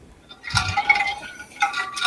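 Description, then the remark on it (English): Someone drinking water from a glass: a soft clink and liquid sloshing, followed by a few quiet sips and swallows. No one speaks. “You got me a second as I was drinking my water.”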